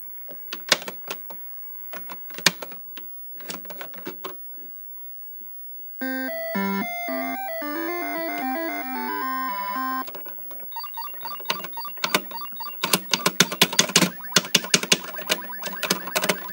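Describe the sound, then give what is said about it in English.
Sharp, clattering key clacks on a Texas Instruments computer keyboard come in irregular bursts while a game is played, then a stretch of bright, bleepy electronic game music plays before more rapid, loud keyboard clacking takes over. “Keyboard's annoying.”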